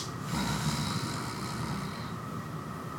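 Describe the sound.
A voice imitates a snore: one long, rough, rumbling snort with a breathy hiss, held at a fairly steady, moderate level for about three seconds, with no talking.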